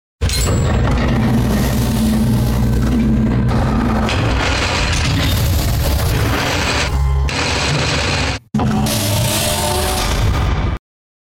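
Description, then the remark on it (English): A vault door sound effect: loud, dense mechanical grinding and rattling with a low rumbling hum, running for about eleven seconds with a brief break near the end. No one speaks. “Let's do the little vault door thing.”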